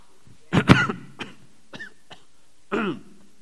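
A fairly loud bout of coughing: one harsh double cough, then a few smaller throaty coughs and catches, ending with a final rasping cough, with no talking.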